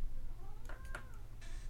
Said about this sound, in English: I'm gonna go do stuff to my cat to make him stop.